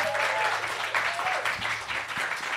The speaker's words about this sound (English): Big round of applause